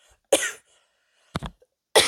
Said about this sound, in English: Excuse me. Yes, I still have a cough. No, I still do not have COVID.